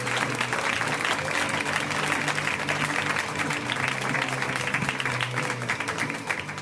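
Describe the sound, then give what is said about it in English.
An audience applauds steadily for several seconds as a comedian is welcomed to the stage, a dense, even wash of clapping that stays loud throughout, with a low hum running underneath and a few scattered voices mixed in. “So guys, please welcome to the stage, very funny man”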